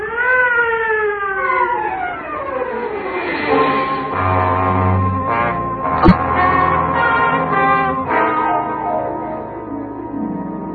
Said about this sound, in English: All right, clear the way, stand back. Clear the way for the ambulance. The ambulance. The ambulance turns out to be the wrong kind of a wagon.